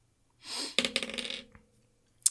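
A brief rattle of dice being shaken, then a quick run of clattering clicks as they tumble across a hard tabletop and settle, followed by one sharp tap. No one speaks.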